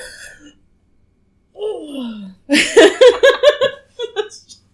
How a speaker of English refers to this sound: So hopefully I'll be yawning less. Hopefully. So I apologize about my yawning. I didn't think I was yawning that much, but who knows?